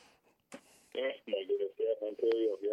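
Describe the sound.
A voice comes through a poor telephone connection, thin and band-limited with garbled, distorted speech in choppy bursts and a brief burst of static near the start.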